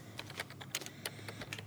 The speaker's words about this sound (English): Okay. So Ren's just, you know, the command screen comes up or whatever, and he's typing away.